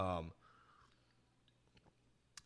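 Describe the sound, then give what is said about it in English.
A short vocal sound opens, then quiet mouth noises: small wet clicks and a soft sip of an apple drink with a swallow, ending in a brief sharper slurp near the end. “Apple, that's delicious. Just delicious. You know, I'll take another sip”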